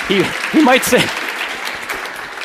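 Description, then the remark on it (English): An audience breaks into steady, dense applause, a continuous wash of clapping that fades slightly toward the end, with a man's voice briefly speaking over it at the start. “He might say it's hogwash, so don't applaud prematurely.”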